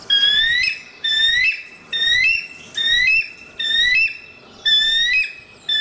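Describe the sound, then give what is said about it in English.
A bald eagle's high, thin cackling call, a series of about six quick bursts of squeaky whistled chirps with short pauses between, fairly loud, with no talking. “The sound of a red-tailed hawk is oftentimes used in movies instead of the real-life cackling sound that eagles make.”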